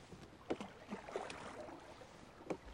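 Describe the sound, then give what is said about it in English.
Oars dip and push through water in a few soft, splashy strokes with gentle gurgles between them as a person rows a boat, pushing the water backwards. The strokes are fairly quiet, with no one talking. “As I pull against these oars, what's happening is that I'm pushing water away from me, backwards, and the momentum that I give to the water backwards is the same as the momentum that I give to the boat forwards.”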